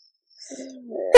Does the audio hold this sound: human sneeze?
yes